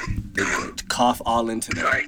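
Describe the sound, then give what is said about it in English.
A person coughs and clears their throat, a few rough voiced bursts in quick succession with brief gaps between them. “cough all into there.”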